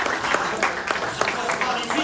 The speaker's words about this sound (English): Applause, applause, that's so good. Wunderbar, wunderbar.